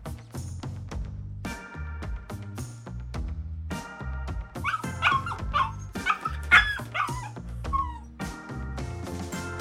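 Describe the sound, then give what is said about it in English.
A dog lets out several high-pitched squeals and yelps, rising and falling in pitch, heard over steady background music with a bass line and chords as the music fades out. “I'd like to apologize to everyone for the squealing dog that happened on the fade out.”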